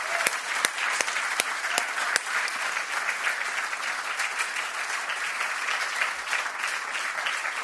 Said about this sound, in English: And so if you're in the house with us and you are a veteran of our armed forces, would you stand so that we could just give you a round of applause?